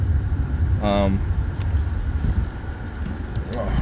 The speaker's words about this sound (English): Oh man, I'm stuck in a long traffic here. I hate it.